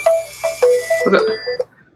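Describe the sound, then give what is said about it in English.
A mobile phone rings with a short electronic ringtone: a quick run of bright, beeping tones in a rising and falling pattern, fairly loud, cutting off after under two seconds. “Aaron's phone started ringing.”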